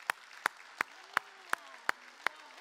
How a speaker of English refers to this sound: Now remember what we do whenever we see something great that God does. I'd like you to stand and applaud, okay? All right.